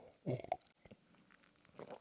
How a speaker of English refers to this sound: Did you hear that? That was whiskey going down out of a coffee cup.